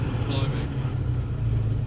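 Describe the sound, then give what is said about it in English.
A tank engine, just started up, runs steadily with a deep, rumbling, bear-like growl, heard from inside the tank with the engine behind, its low throbbing drone loud and unbroken for the whole couple of seconds. “Yes, it's got a bear-like growl, hasn't it?”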